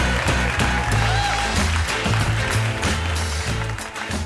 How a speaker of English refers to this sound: And a big round of applause for Alexandra.